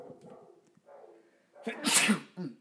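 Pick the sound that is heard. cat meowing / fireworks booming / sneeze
sneeze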